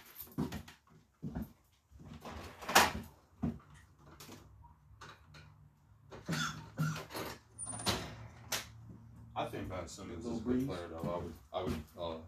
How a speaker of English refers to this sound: I'm gonna open the door.